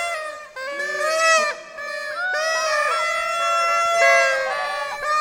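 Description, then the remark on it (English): A crowd of voices imitates the noisemakers and cheers of a street parade crowd shouting "yay, hip, hip, hooray", a loud, continuous jumble of overlapping honking, buzzy toots and rising whoops that swell and dip for several seconds. “And they're blowing their noisemakers and shouting, yay, hip, hip, hooray.”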